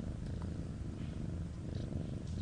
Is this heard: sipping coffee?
no